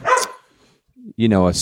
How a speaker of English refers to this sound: Wow, the dogs ran in specifically to bark right next to the microphones.